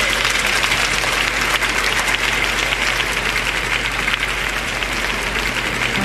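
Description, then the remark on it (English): An audience claps steadily and loudly for several seconds, a dense, continuous wash of many hands with a faint low hum underneath and no voices standing out. “Come on, clap your hands and give the Lord some praise.”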